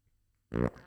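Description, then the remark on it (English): A single short, buzzy fart-like noise made with the throat, loud, lasting about a quarter second before trailing off into a fainter rasp, with no talking. “I can fart with my throat.”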